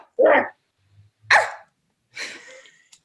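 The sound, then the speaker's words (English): A person imitates a dog barking with three sharp, loud woofs spaced about a second apart, the last one breathier and trailing off, with no other talk around them. “It makes me want to start barking.”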